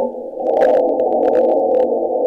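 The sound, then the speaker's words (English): Sonified NASA seismometer data of wind gusts and arm moves: a loud, steady low-to-mid rumbling drone with a whooshing, warbling texture, dotted with brief crackles and pops throughout, with no voices. “Wind gust, arm move, arm move, big wind gust.”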